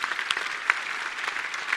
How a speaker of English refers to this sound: Let's give them a round of applause for their work.